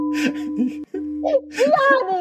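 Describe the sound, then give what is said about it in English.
A person imitates a newborn baby crying for a 7-second challenge, producing a few wavering, high-pitched wails with a brief pause between them, fairly loud over a faint steady hum. “cry like a newborn baby.”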